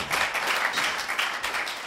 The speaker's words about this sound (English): So thank you for being here tonight. Give us a clap to let the people at home know you're here.